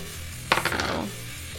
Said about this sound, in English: Ah, oh, these dice are cursed. They're terrible. I rolled a 1.